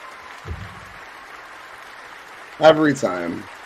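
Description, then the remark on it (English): A round of applause forms a steady hiss of clapping throughout, fairly even in level, with a low thump early on and a brief voice calling out over it near the end. “Every time with the banger, the round of applause.”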